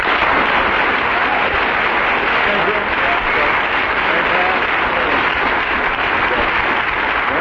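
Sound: audience applause voting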